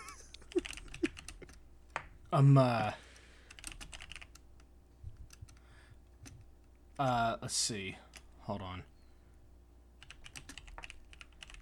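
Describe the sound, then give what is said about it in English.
Steady clicking of keys on a computer keyboard, fairly quiet, with a couple of short spoken phrases breaking in briefly over the typing. “When we're typing. I hear a clickety-clack.”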